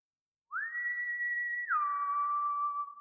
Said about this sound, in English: Out of nowhere, he suddenly breaks the silence with the most terrifying sound I've ever heard. He whistled.